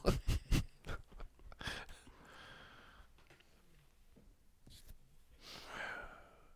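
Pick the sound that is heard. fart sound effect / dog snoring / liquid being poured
dog snoring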